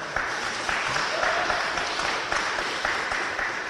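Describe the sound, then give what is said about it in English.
A crowd on the uppermost floors of the old State House in downtown Hartford, Connecticut, claps steadily for several seconds, a dense, even patter of many hands at a fairly loud, constant level, with a faint murmur of voices mixed in. “Clap if you think that we're getting screwed and having to pay for this war.”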